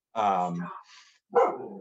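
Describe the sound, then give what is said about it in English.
A dog barks twice, a longer, drawn-out bark followed by a short pause and a second sharp bark, both loud and clear. “Sorry, dog.”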